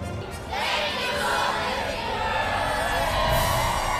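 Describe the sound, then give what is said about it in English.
A large crowd of Disney theme park visitors roars and cheers with overlapping shouts and whoops, swelling suddenly after a quieter start and staying loud and steady throughout. “Think about that. All those people.”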